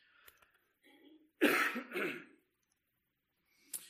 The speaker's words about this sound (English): Excuse me just a minute, I feel a cough coming on.